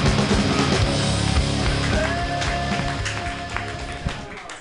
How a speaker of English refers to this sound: Keep it clapping